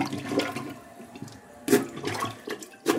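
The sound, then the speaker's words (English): A toilet flushes with a rushing, gurgling swirl of water, fairly loud, with sharp splashy surges recurring through the three seconds and no one speaking. “So that's what blocked the toilets in the dorms.”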